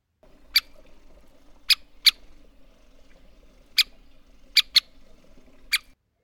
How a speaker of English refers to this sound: Let's do the same thing for the pink calls. First, Downy Woodpecker. Harry Woodpecker. American Three-Toed Woodpecker.